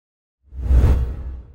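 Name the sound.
whoosh transition sound effect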